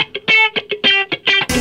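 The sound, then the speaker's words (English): A loud, distorted guitar plays a quick series of short, choppy notes with a swirling phaser or flanger sweep, ending abruptly in a burst of harsh noise. No one speaks. “Phaser? Is that flanger? Or some sort of sine wave?”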